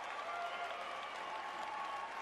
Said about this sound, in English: And now the crowd is going to sit here and cheer for him while he, you know, sharply inhales. I'm going to turn it down. Listen to this. They're going to cheer for him.